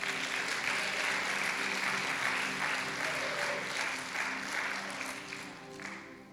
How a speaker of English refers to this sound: Give Jesus a hand clap tonight.